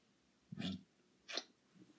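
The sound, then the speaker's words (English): Two quick kissing smacks with a short pause between them, soft and wet-sounding against an otherwise quiet background. “We kissed this morning when you got over here. Okay, well, let's do it again because I don't know.”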